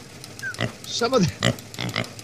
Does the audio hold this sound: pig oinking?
yes